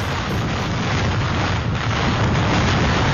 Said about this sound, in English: This is what 185-mile-an-hour winds sound like.